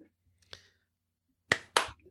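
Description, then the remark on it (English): A few sharp finger snaps given as a round of applause: one lighter snap, a pause, then two crisp snaps in quick succession, bright and dry against near silence. “That's a round of applause.”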